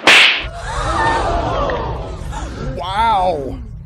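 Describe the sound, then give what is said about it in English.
A single sharp, loud slap to a person's face cracks out at the very start, followed by a crowd reacting with shouts and babble, and a rising exclaiming voice near the end. “just slapped the crap out of me.”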